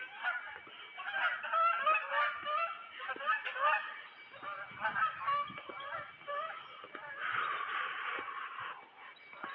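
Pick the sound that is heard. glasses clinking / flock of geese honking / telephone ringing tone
flock of geese honking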